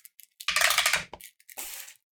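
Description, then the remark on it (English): A die, rerolled by a player during a tabletop game, clatters and rattles across a hard tabletop in a fairly loud burst, then settles with a few lighter clicks and a brief second skitter, with no voices. “You reroll just one of your dice.”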